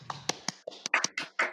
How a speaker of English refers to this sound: What a round of applause there.